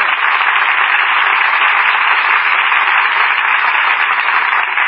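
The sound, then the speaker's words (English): A dense, steady wash of studio audience applause runs for about five seconds at an even, loud level, with a muffled, band-limited quality typical of an old broadcast recording. “Say, you got a lot of applause tonight.”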